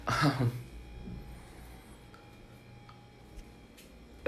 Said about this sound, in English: Ooh, and we almost made it a whole episode without me coughing. Did you notice that? I think that's why my allergies had to start acting up.